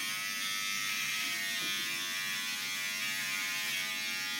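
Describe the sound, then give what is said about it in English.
An electric hair clipper buzzes steadily and loudly throughout as hair is being cut, a dense, constant motor hum with bright harmonic whine and no pauses. “Are you cutting your hair dry or wet? I believe with the buzzer you're supposed to do it dry.”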